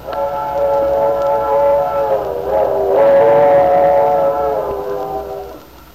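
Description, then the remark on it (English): The steam whistle of the 7:15 train blows one long, sustained chord-like wail that dips slightly in pitch midway, loud and clear over a low rumbling background, then fades out. “There's our whistle, Lefty. Yep, the 7:15. Some engineer on that train.”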